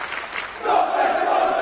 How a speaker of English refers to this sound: There's a few thousand people there, at least. I can't tell. I can't tell how big the crowd is.